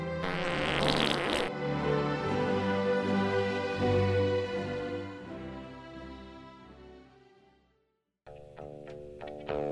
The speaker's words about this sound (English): A new expose on farting.